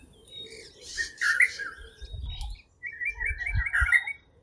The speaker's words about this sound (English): And then let it take you to this. Let your focus drift to this bird in particular. Sometimes I feel I already know this bird. In fact, I wonder if it missed us.